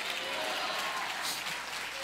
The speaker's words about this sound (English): If you believe it, clap your hands and shout hallelujah.